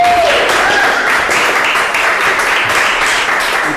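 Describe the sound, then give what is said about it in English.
Steady, loud applause welcoming guest Clinton Callahan, a cast member of the coaching movie, onto an online coaching live show: a dense wash of many hands clapping that holds at an even level throughout, with a brief faint whistle-like tone near the start. “Come and join us, Clinton. Applause, everybody.”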